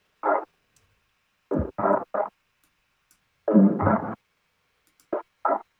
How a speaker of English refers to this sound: Did some formant pitching again with these, some intense filtering, reverb, and a noise gate, which gives it this glitch feel, and they ended up like this.